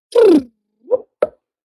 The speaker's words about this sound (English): Is what the sound sounds like. So that is a sound that humpback whales worldwide all produce.